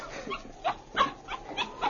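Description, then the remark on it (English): A small dog, Bucky, yelps after being kicked at the door of the Klondike Hotel, a quick series of sharp, high cries, about five of them in rapid succession, fairly loud, with no one talking. “Maybe a kick will help him along.”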